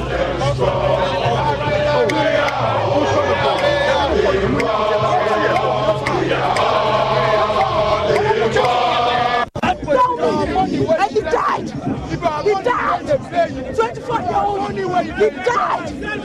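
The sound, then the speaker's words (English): A loud, agitated crowd of protesters shouts and chants over one another in a dense, continuous roar at dusk, demanding the removal of barricades so they can demonstrate in front of the Jubilee House, with a brief cut midway before overlapping raised voices surge again. “As it starts to get dark, the crowd becomes agitated, demanding the removal of barricades so they can demonstrate in front of the Jubilee House.”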